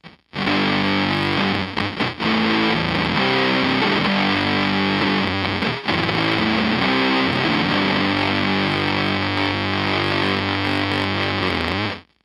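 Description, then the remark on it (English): A heavily distorted, buzzy octave-fuzz guitar tone from a modded MXR Blue Box pedal with the blend knob turned all the way up, loud and saturated with sustained chords and a few brief breaks, played alone without talking. “And now you're going to hear the modded version with the same settings.”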